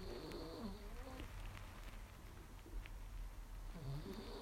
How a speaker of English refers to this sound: And you can probably hear my dog snoring as usual.